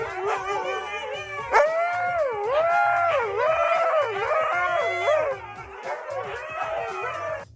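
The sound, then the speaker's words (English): A husky howls loudly, a long wavering cry that rises and falls in pitch, looping through several sliding, yodel-like swoops with barely a pause. “Great dog videos. Serious doggy daycare action here. Husky car alarm cricket.”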